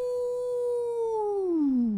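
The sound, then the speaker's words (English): A person imitates a wolf howl: one loud, sustained tone held steady for about two seconds, then sliding downward at the end. No talking accompanies it. “Man, a little howling of the wolves over there”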